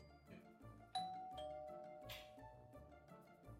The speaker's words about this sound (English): Doorbell. Oh, I'll get it. I'll get it.